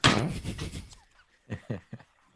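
A drawer scrapes as it slides along, followed by a few quick, soft knocks as it bumps closed, fairly quiet, with no one talking.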